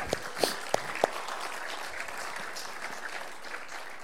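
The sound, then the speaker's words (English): A church audience claps for the kids together in a dense, steady patter for about four seconds, with a few sharp, louder claps standing out near the start and no voices over it. “And can we just give the kids a clap?”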